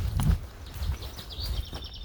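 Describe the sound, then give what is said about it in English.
Faint bird chirps and calls come through in woodland over rustling and thudding footsteps outdoors, with no one speaking. “We hear the birds.”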